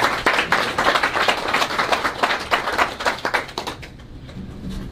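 An audience breaks into applause, a dense crackle of many hands clapping at a steady, energetic level for about four seconds before it quickly thins out and fades.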